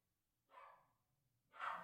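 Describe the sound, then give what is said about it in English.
Two short, fairly quiet dog barks about a second apart, with a hushed background and no talking in between. “your dog hates that one.”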